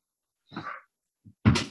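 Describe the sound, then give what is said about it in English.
A dog makes a couple of short noises: a brief whine-like yelp, a tiny grunt, then a louder, sharper bark-like burst, with no one talking. “The dog's at in the bollocks.”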